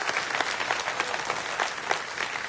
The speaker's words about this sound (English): Now, we're clapping our hands